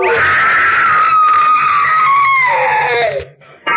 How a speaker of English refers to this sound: Wish I never heard that scream.